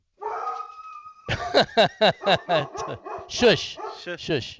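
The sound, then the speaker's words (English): A dog lets out a brief high whine, then barks over and over in rapid, uneven, loud bursts. “It's my dog, Macy.”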